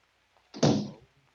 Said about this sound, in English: And close the door.